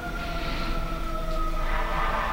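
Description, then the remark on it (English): Distant sirens sound as a steady, sustained tonal wail held over a low background rumble, with no one talking. “As the sirens go off in the distance.”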